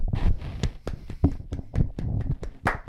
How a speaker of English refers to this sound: Oh, tough sound for the audio listener. Probably like what? We were clapping. We were applauding myself. Applauding.